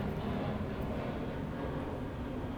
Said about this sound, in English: Lots of airplanes tonight. Yeah. People going away for the holidays.